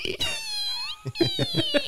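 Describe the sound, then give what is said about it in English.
A voice imitates a squeaky bunk curtain being slowly pulled across: a long, high, wavering squeal that glides in pitch, followed by a run of short, rhythmic squeaks, about five, each rising and falling. “Just slowly pulling that curtain across your bunk. That needs greasing.”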